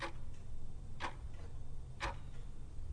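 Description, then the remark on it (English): A clock ticks steadily about once a second, each sharp tick followed by a fainter tock, over a low continuous hum in otherwise quiet surroundings. “The clock is counting down to the hour.”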